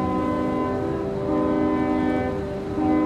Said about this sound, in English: Robert blasts out the fort's safe passage code. Two long whistles, one short.